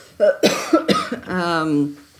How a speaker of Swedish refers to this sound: Trots den där lilla hostan, jag mår fantastiskt.